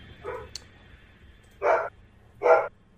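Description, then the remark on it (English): A dog barks: one softer bark, then two loud, sharp barks spaced about a second apart, against a quiet background with no talking. “Doggy. Yeah.”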